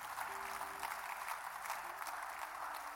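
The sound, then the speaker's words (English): A church audience claps their hands to praise Jesus during a sermon, a dense, continuous burst of applause that stays steady and fairly loud for the whole stretch, with faint sustained low tones underneath. “Come on, somebody clap your hands and praise Jesus.”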